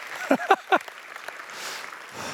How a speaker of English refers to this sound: And applause, you know, at least someone up there is like, yeah, that's good news. It is good news.